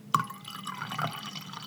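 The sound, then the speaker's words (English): Red wine poured into a glass, opening with a sharp clink and then a steady, trickling gurgle as the glass fills, with faint dripping sounds throughout and no voices. “I'm just popping myself a nice little glass. I'll just fill up here before I do the pod.”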